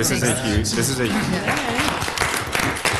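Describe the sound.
Council members at a Mountain Village Town Council meeting applaud an announcement, with dense, crackling claps that run the whole three seconds, loud and continuous, while several voices talk and murmur over the clapping.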